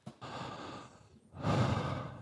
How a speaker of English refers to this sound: Am I breathing too loud into the microphone? No.